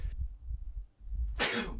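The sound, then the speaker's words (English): A single sharp sneeze bursts out on air during a live broadcast near the end, loud, after a moment of low muffled rumbling and breath noise. No one speaks. “Excuse me, I just sneezed on air.”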